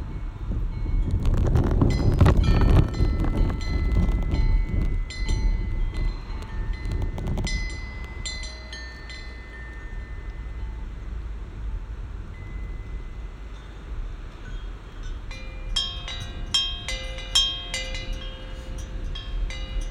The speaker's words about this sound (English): Okay, the car is gone.